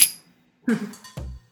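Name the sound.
glasses clinking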